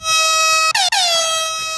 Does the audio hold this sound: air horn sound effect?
yes